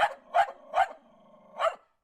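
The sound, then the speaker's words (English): A dog barks four times, sharp, three quick barks followed by a short pause before the last one, with no voices around it. “You're a dog. You can't get the virus.”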